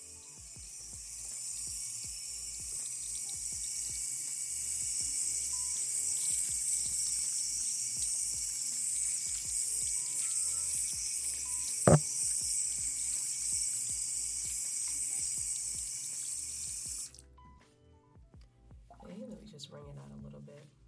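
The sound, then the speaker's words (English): Tap water runs steadily with a broad hiss, splashing and shifting as a person's hair (sister locks) is wetted under the stream before washing, then cuts off near the end, leaving quieter drips and handling sounds. “So typically I start by washing my hair by wetting it.”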